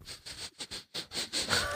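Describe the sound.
A person imitates disapproving sniffing at a smell they don't like: a quick run of six or seven short, breathy sniffs through the nose, fairly soft, ending in a slightly harsher, wheezy inhale.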